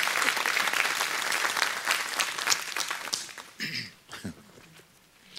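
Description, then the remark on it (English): An audience claps, a dense wash of many hands for about three seconds before thinning into scattered claps and a few voices calling out, then fading. “Can I give God a big hand clap and say amen to that?”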